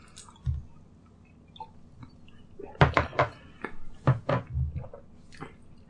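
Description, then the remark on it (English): Someone chugs a tall, thin shot of alcohol: a quick run of wet, throaty swallows bunched together, with small clinks and mouth noises around them. “I'm going to chug my whole thing.”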